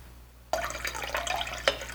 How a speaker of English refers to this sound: I'm getting a coffee French press, adding about 2 tablespoons of hot water to the French press. This is just to warm it up a little bit. Then I'm discarding that water.